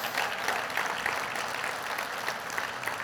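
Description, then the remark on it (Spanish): An audience at a Spanish-language church service gives a loud round of applause to the Lord, many hands clapping together in sustained, dense applause, a steady crackling wash for about three seconds with no pause or voice standing out. “¿Cuántos le pueden dar un fuerte aplauso al Señor por eso?”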